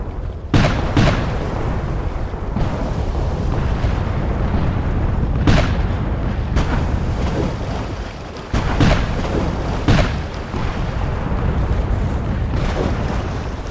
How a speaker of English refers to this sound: That morning, Porter's 19 mortar ships begin firing their 11 and 13-inch guns from their carefully planned positions on the river.